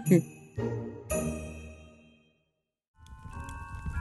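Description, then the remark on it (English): A bell rings three times in quick succession, each clear strike ringing out and fading before a pause, then a softer, busier stretch of sound follows. “Every time a bell rings, an angel gets their order from a concession stand at a go-kart track.”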